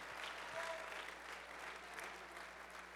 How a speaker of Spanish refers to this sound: Alguien dele palmas a Dios porque tú crees esa palabra.